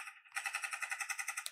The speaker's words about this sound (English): Gunshots everywhere.